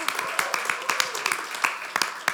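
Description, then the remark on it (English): An audience claps in a brief burst of applause: sharp, irregular hand claps overlapping into a steady patter at moderate loudness, with a faint murmur of voices underneath. “Yeah, you guys can clap for that.”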